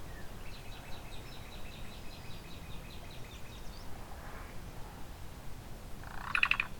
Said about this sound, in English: So I'm up close with a black-billed cuckoo. It's just a few feet away, preening.